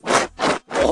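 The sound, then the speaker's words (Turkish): A voice imitates a King Kong roar as three short, harsh, raspy bursts in quick succession, loud and breathy, with brief gaps between them. “King Kong kükredi, kükredi.”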